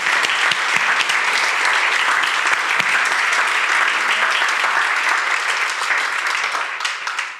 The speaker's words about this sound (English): Let me see my Redemption Kids. Hey, stand up. Let's give a big round of applause for all those who serve in Redemption Kids.